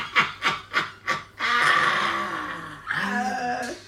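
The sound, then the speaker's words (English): A voice imitates a cackling laugh: four quick, rhythmic ha-ha bursts, then a long, strained, wavering high-pitched shriek that dips in pitch and rises again, loud and with no other speech. “He's back there and you just hear a cackling.”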